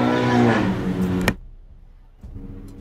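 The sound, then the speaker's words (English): A motorcycle roars past, its loud engine drone and low humming tones filling the first second before cutting off sharply, leaving only a quiet low rumble afterward. “There was an aggressive motorcycle driving by just now.”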